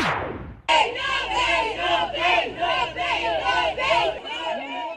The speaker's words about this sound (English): An angry crowd of protesters gathered outside the Verulam Magistrate's Court, where a 43-year-old father made his first court appearance on charges of sexual abuse of his 10-year-old stepdaughter.